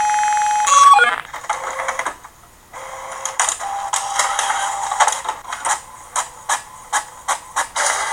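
A printer starts with a brief electronic tone, then whirs and clatters as it feeds paper, ending in a run of regular rhythmic mechanical pulses as pages print. No one speaks.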